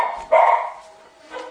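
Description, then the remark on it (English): A dog that has just come into the room lets out one loud bark, then a quieter, shorter follow-up bark about a second later, with no talking. “My dog came in here, and I think my fiance walked in.”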